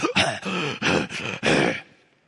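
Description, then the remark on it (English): A voice imitates a horse panting: five quick, rough, breathy huffs in a steady rhythm, fairly loud, fading into a soft trailing breath. “And comfort is naham, and naham is the panting of a horse.”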